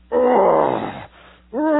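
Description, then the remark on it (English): A man's voice imitates a lion's growl: one loud, rough, drawn-out roar falling in pitch, a brief breathy pause, then a second growl starting. “And I could hear that thing.”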